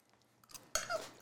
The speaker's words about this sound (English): Still got the crunch in the asparagus.